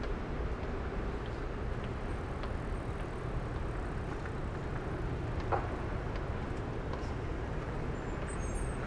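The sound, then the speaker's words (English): A steady rush of falling water from the waterfalls of the Twin Towers Memorial, heard in the distance, an even white-noise wash that stays constant throughout, blended with a low hum of traffic and no voices. “you can hear a little bit in the distance, maybe not in the microphones, but to the ear, you can hear a little bit of the main Twin Towers Memorial, which we will see shortly, but the waterfall components.”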